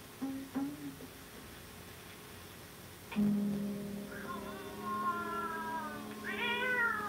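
A cat meows several times, drawn-out, rising and falling cries with a whiny tone, clear against a quiet background, with no talking.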